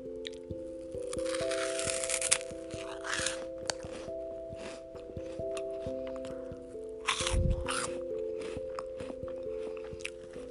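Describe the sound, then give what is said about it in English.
Loud, irregular crunching of chips being chewed, with sharp bursts coming in clusters over a steady low tonal hum that runs throughout. “Just listen to the crunch, you guys.”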